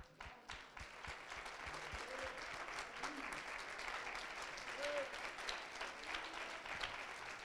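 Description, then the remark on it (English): A sizable audience applauds steadily for several seconds, dense clapping at a fairly even level, with faint crowd voices mixed underneath. “Should we applaud?”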